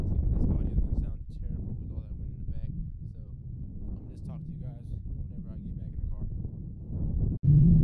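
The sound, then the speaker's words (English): Heavy low rumbling wind buffets the microphone outdoors beside a bike, a steady roaring gust that swells and fades throughout, with a sharp dropout near the end before it surges back loudly. “I was on the back of my bike about to fall asleep, but damn, the wind's kind of picking up.”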